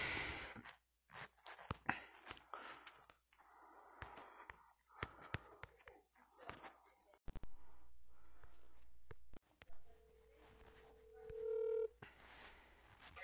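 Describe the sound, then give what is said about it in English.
Phone dialing tones: a string of short clicks and taps, then steady electronic beeps near the end, fairly clear, with no one talking. “So anyway, with that note, I'm going to try to get them on the phone quick.”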